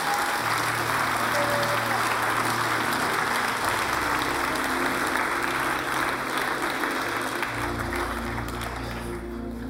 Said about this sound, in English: Come on, let's give him a clap offering.